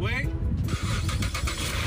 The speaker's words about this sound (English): All right, we're going to see if the car starts now.